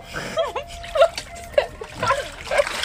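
Close, sloshing water splashes in uneven bursts, mixed with bubbly, gurgling warbles as if someone is moving their head around underwater.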